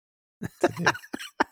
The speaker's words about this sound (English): I gotta clear my throat.